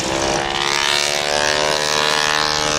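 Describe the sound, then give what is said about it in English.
A propeller airplane engine drones steadily at an air show flight line, a loud, continuous hum with a rough, buzzing edge that holds for the whole stretch, with no voices over it. “Watching soaking the airplanes. Up aviation ambiance, yeah.”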